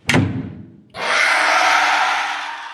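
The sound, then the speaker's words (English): A room door slams shut behind someone fleeing, with one heavy, booming thud that fades over about a second. A loud, steady hissing wash of noise follows and lasts to the end, with no voices. “And whatever it was that got said sent her shadowy figure flying out of the room, the door slamming behind her as her screech trailed off down the hall.”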